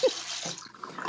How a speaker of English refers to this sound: No, I'm filling up water. Oh, okay. Sorry, it sounded like prescription meds.